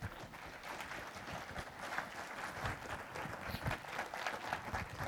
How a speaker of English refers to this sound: Let's get a Lord a hand clap of praise.